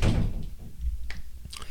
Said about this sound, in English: Door shut.